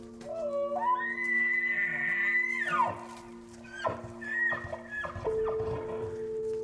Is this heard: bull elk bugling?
yes